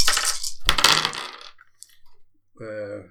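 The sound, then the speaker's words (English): Dice clatter and tumble across a hard tabletop in two quick bursts, then settle with a few faint ticks before a voice briefly speaks near the end, as the dice are rolled for a ranged combat roll. “Doesn't matter which dice. Just. I'll just do it like those.”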